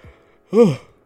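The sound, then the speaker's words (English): A single short voiced yawn, rising then falling in pitch over about a third of a second, preceded by a faint breath and otherwise quiet. “I don't know why I'm yawning.”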